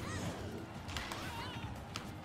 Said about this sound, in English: That's chicken.